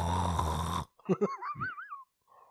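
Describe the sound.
A voice imitates a knocked-out boxer snoring on the mat: a loud, raspy snore drawn out for under a second, then a few short grunting bursts and a wavering, whistle-like vocal tone that trails off.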